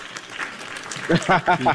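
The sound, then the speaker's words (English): A burst of crowd applause, a dense wash of steady clapping, then a voice starts talking as the clapping continues faintly underneath. “I feel like I should give you a round of applause for that.”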